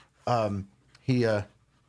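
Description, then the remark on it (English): A dog pants in two fairly loud bursts, each a strained, voiced huff lasting under half a second, separated by a short quiet pause. “I don't know what they're doing to your dog back there.”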